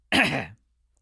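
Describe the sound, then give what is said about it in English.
A single sharp, raspy cough, made on cue as a test, bursts out, lasting about half a second before cutting off into silence. No one speaks. “And then Noah reacts to the cough.”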